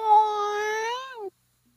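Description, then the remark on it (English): A single drawn-out, steady vocal meow, a person mimicking a cat, held for about a second before bending downward and cutting off abruptly into silence. “We're listening for meow.”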